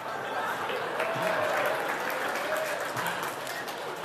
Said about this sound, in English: They're clapping.